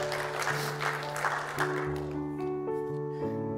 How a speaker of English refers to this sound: I'm waiting to see a hand. Say amen and clap your hands.